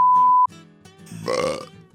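A steady electronic beep tone cuts off, followed by a drawn-out burp that rumbles low and swells into a rough, gravelly peak before fading. No one speaks.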